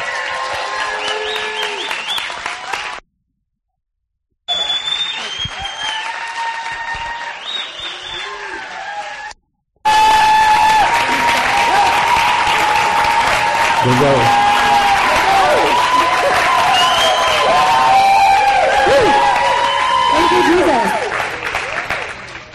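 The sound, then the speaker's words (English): An audience in a church sanctuary applauds and cheers to welcome the ministry leaders, dense steady clapping mixed with shouts and whoops. The sound cuts out twice briefly, then returns fuller and louder for the rest. “So for the first time in a long time in the sanctuary, can we really welcome”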